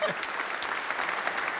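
Steady, fairly quick hand clapping by one person that runs evenly throughout, with no voices. It sounds moderately loud.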